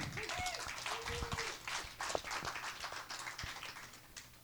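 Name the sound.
audience applause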